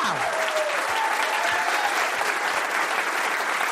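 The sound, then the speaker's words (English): A crowd claps steadily and loudly, a dense, even wash of many hands with no break, some brief whoops rising through it near the start, as a show audience welcomes comedian Todd Barry out as the last guest. “Start clapping right now for the hilarious Todd Barry.”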